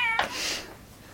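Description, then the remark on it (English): A single short meow from a cat in the road, clear, that breaks into a raspy, breathy tail before fading out. No voices alongside it. “You see a cat in the road! What do you do?”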